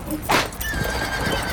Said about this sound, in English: The fire horse is racing across the ring, bringing us closer and closer to the fire.